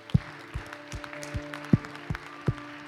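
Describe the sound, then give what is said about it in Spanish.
An audience claps together for the Lord during worship, in a steady rhythm of about three claps per second, with quieter scattered clapping between beats and a sustained musical tone held underneath. “¿Por qué no le damos un buen aplauso a nuestro Señor?”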